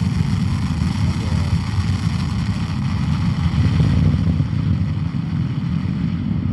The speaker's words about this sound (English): And it sounds like this. 9, 8, just 7, watch it. 6, 5, oh, here it goes. 4, 3. 2, 1, lift off of the Falcon 9 rocket with Jason 3, continuing the mission for global insight into ocean sea surface height and its effects on our planet.